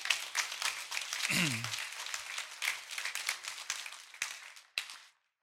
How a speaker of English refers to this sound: This is the Sleep in Heavenly Peace crew. You should probably clap and woohoo while they come.